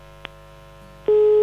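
A steady electronic telephone busy tone sounds over a low line hum on a dropped call, cutting in loudly near the end after a brief click.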